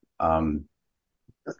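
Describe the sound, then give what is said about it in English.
A single loud, throaty cough bursts out, followed after a short pause by a couple of faint, brief vocal noises. “Oh, I was coughing.”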